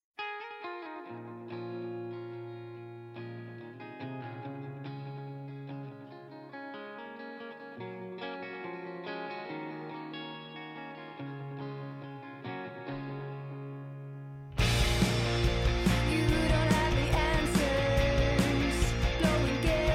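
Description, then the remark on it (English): Music with a harsh, angry distortion effect: a sustained, buzzing melodic passage plays alone, then about three-quarters through a much louder, dense, distorted full-band wall of sound slams in. “This is an interesting start, a different instrumentation, an angrier distortion on this one, as well as the band dropping their own title in the middle of it.”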